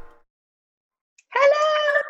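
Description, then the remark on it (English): A cat lets out one drawn-out, fairly loud meow, following a brief faint sound and a short silence. “what's your cat's name? This is Jeannie. Obviously had to come and join in too.”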